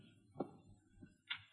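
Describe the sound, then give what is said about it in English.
A bedroom door upstairs sounds faintly: a soft low thump, then two short, sharper clicks close together near the end, with no voices and little else around them. “Sounded like our bedroom door.”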